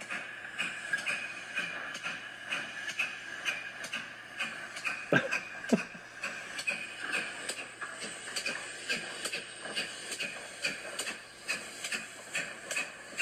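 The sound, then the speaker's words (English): A train rumbles past in a steady, fairly loud wash of noise, with rhythmic clacking of wheels over the rails throughout and a couple of sharper knocks midway. No one speaks. “I think it's the O-Train.”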